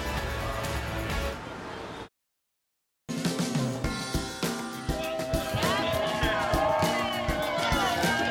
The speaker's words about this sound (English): Back at 8:30, and what a crowd on this Friday just before July 4th. Yeah, they're fired up for the holiday, that's for sure.